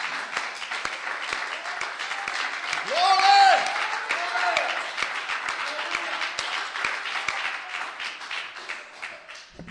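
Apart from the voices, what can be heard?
audience clapping hands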